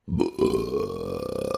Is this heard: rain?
no